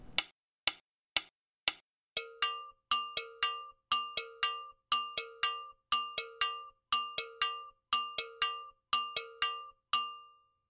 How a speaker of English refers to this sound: The pattern for it is low, high, mute, high, low, high, mute, high, with the mute being placing the high bell against the thigh to mute it. Creates a really interesting sound, but at tempo, that pattern is a little tricky to put all together.